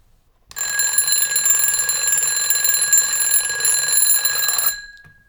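alarm clock ringing

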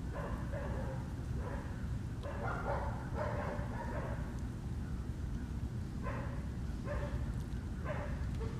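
dog barking

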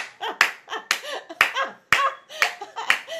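audience hand clapping

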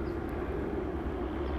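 helicopter flying overhead

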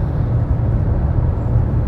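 car interior road noise

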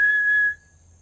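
person whistling

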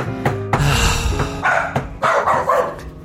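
dog barking

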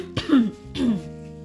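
cough

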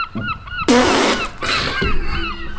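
birds honking

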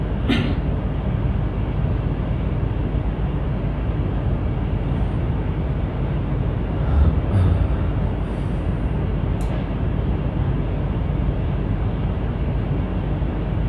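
air conditioner running

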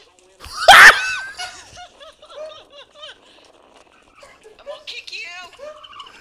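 turkey gobbling

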